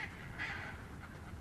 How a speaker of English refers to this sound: Now the birds on it, angrily squawking, soaring above, in and out of the ledges.